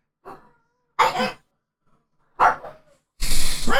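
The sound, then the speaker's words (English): A dog gives four short, sharp barks with uneven gaps between them. The barks are loud, and the final one is longer and harsher. No one speaks. “Oh, dog doesn't like rugby.”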